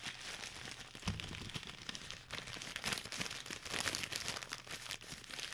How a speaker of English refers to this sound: Just crinkle that for a while.